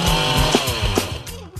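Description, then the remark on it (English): A chainsaw engine revs loudly for a moment, its buzzing motor note rising and dipping in quick surges with no voices over it. “Why is the number one selling brand of chainsaws not sold at Lowe's or the Home Depot?”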